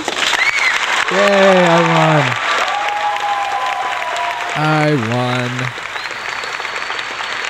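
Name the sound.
applause sound effect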